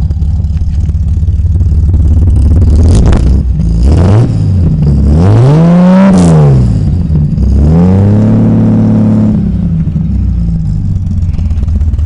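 A car engine revs up several times through a twin exhaust, one pipe feeding a double exhaust pipe, pitch sweeping up and falling back in loud bursts over a steady idle rumble.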